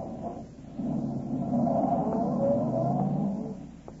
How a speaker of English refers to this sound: Cooper walked to his car, got in, stepped on the starter, and drove off.